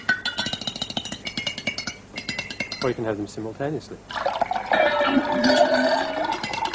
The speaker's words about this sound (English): So what the machine is loading now is the sounds of making tea. We've got, first of all, pouring water. Then we'll throw the spoon in. Stir it around a bit. And you can play those sounds like a piece of music. Right, they're pitched to the keyboard.